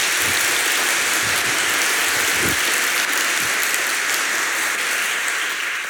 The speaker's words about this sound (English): So put your hands together once again and welcome Alok Jar.